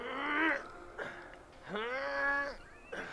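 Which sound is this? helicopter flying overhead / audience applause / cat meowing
cat meowing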